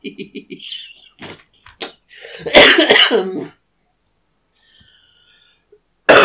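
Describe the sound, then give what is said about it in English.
A fit of coughing: several short, raspy hacks build into one heavy, harsh cough, followed by a few seconds of near silence before another sound cuts in. “Sorry for the coughing, everybody.”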